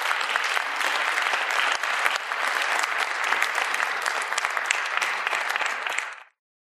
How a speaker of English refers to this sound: Give these people a round of applause, folks.